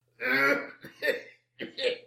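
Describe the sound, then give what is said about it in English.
An old, unwell man coughs three times in close succession, a longer rough hack followed by two shorter ones, with no talking. “Cough your heart up.”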